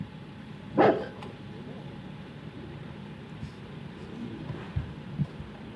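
rottweiler barking

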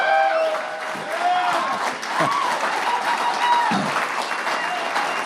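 audience applause

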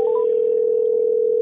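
telephone dial tone

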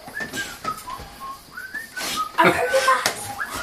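cheerful whistling

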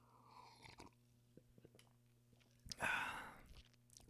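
sipping soda

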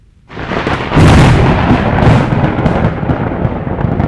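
lightning strike thunder crack

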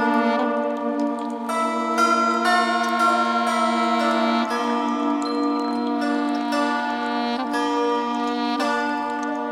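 chimes

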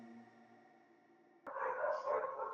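dogs barking

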